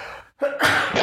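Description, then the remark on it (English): A single sneeze: a brief quick intake of breath with a rising "ah", then a loud, sharp burst of spray that trails off. No one speaks. “Bless you.”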